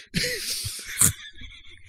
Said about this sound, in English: Here's fart two.